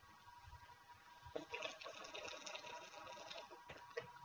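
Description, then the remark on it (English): Liquid sloshes inside a water bottle in soft, irregular splashy bursts, starting after a brief quiet moment and continuing for a few seconds, with no talking. “No, that's my water bottle,”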